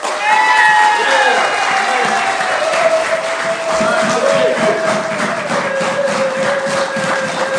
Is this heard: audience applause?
yes